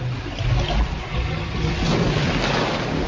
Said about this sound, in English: The water's going down. It's going down.